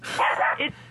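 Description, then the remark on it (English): A female dog named Shine barks, a quick sharp bark followed by a shorter second yap, loud and clear with no talking over it. “What's the dog's name?”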